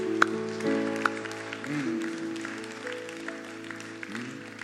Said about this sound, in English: Give a good clap offering to the Lord.